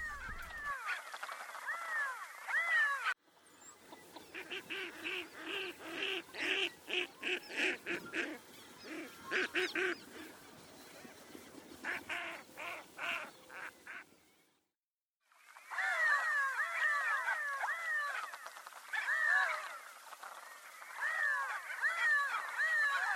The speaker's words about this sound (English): The redhead sounds kind of like it's mewing there towards the end.